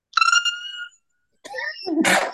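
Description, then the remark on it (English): A single loud sneeze: a drawn-out, tonal 'ah' buildup, a short pause, another rising breath, then a sharp, noisy burst at the end. No talking. “Bless you. God bless you.”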